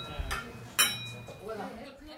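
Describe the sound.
Glasses clink together once in a bright toast, the ring lingering briefly, with a softer knock just before and low murmuring voices underneath.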